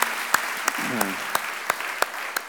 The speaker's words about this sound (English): Great. Give yourself a round of applause, everyone. That's fantastic. Well done.